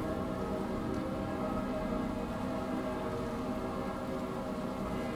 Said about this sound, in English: We have a bit thunder.